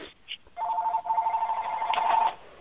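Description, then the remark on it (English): A telephone rings with a steady, warbling electronic tone lasting about two seconds, clear, then cuts off abruptly just before a brief burst of voice. “Let me move the phone here.”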